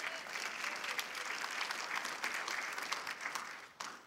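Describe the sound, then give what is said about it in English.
An audience applauds steadily for about four seconds as two contestants are called up, a dense, even patter of many hands clapping with a few louder claps poking through, then it thins briefly near the end. “Give them a round of applause and say, come.”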